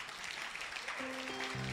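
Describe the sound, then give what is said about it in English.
A crowd claps steadily for the Lord Jesus in a dense, continuous wash of applause. Partway through, sustained musical notes, such as from a keyboard or organ, begin to sound beneath it. “Clap for the Lord Jesus.”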